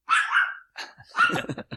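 A dog barks in a quick, uneven burst: one drawn-out bark, a short one, then a rapid string of sharper yips and barks, with no one talking.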